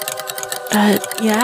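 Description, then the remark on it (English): Rapid, steady clock-like ticking fills the first half second, then a loud, sustained voice-like tone with sliding pitch rises over it for the rest of the moment. “And the ticking noise that you've heard, that you were hearing just a second ago, it's now filling your ears.”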